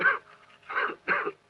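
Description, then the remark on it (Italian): Three short, husky coughs given on request during a medical examination, spaced roughly half a second apart, each a brief rough burst with quiet gaps between and no talking. “Dia un colpo di tosse.”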